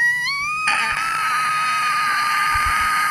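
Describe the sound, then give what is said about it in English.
The hinges of a hotel suite door squeak loudly as it is opened for room service, one long, high, whining squeal that rises briefly at first and then holds steady for about three seconds, with no talking. “They should oil those doors.”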